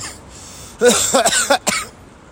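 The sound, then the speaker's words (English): A burst of four or five loud coughs in quick succession, harsh and raspy, with a brief throat-clearing quality, standing alone with no talking; the cough comes from jet lag, hay fever and smoke. “I've developed a cough, which is a combination of jet lag, hay fever, and a lot of smoke in Bird 56.”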